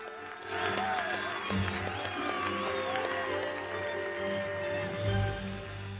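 A round of applause from a crowd: steady clapping with whoops and mixed voices layered on top, holding at a fairly even, moderately loud level for several seconds.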